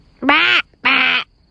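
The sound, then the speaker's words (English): A man loudly yells out an imitation of a large bird call with two harsh, squawking bursts separated by a short pause, forceful, like a crow or goose cry. “And all of a sudden he yelled out a large bird call that sounded a bit like this.”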